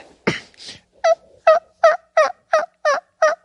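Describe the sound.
A person imitates a turkey gobble with their mouth, without a turkey call device: a sharp opening burst, then seven quick, evenly spaced warbling yelps, loud and rhythmic, with no talking over them.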